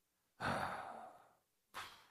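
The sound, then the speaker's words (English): A voice imitates exaggerated heavy breathing: one long, forceful, noisy exhale that trails off, followed by the start of a sharp second breath. No words are spoken. “Or even if we don't say anything, just breathing hard.”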